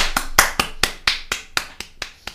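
A round of applause for a guest: a steady run of about ten sharp, crisp hand claps, evenly spaced at a brisk rhythm, each a bright snap with no voices underneath; the claps stay at roughly the same loudness throughout.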